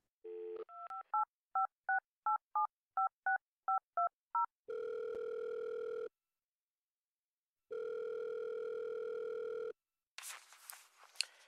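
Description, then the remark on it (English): A phone line tone gives way to a quick run of about ten dialing beeps, then two long ringback tones separated by a pause, followed by a brief noisy click as the call connects. “I was actually just calling because I haven't heard from you in a while”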